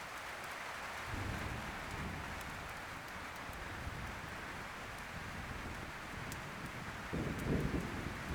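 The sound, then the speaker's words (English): Steady, heavy rain from a thunderstorm pours down over a forest with a constant hiss, while deep low rumbles of thunder roll in and swell at moments, especially near the start and end, echoing through the forest and making log cabin walls vibrate. “Occasionally, the thunder echoes through the forest, causing the log cabin walls to vibrate.”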